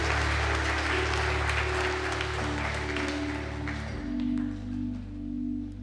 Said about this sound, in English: Let's give Pastor Angel a round of applause.